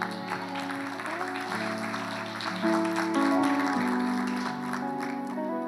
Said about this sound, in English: See, there's more claps to come.